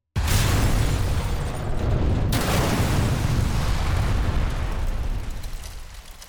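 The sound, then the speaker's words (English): A car bomb, two big sticks of dynamite hidden under the hood of a black and gold Oldsmobile and set off when the ignition key is turned, goes off with a sudden, loud blast, then a sustained, heavy roar and rumble that slowly fades over several seconds. No voices. “The car erupted into a fireball, thanks to two big sticks of dynamite that were hidden under the hood.”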